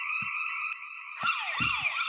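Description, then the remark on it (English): A house alarm that was not deactivated blares with a loud, shrill electronic tone that holds steady, then switches to a rising-and-falling warble. A few dull thumps sound underneath, and no one speaks. “My wife didn't deactivate the alarm.”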